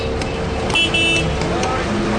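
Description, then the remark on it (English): Busy city traffic in Cairo rumbles steadily while car horns toot in short bursts, one sustained honk standing out near the middle over the constant roadway din. “But then you can add the incessant banter of Cairo's infamous traffic.”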